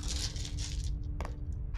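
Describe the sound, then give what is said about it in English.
Several dice of different colors rattle and tumble across a hard tabletop for under a second, then come to rest with a sharp click and a couple of faint taps, fairly quiet. “I'm just using all sorts of color dice at this point.”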